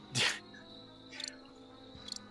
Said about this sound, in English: And... there is a very strange noise coming from the tree line. Kind of a... like it's a weird, almost like a modem sound. Can't believe there's cicadas in this world, too.